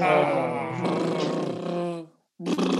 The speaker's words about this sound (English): How are you making that noise? Putting my lips together, then blowing them out.